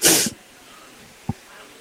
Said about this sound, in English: I have to sneeze. Yeah. Sorry.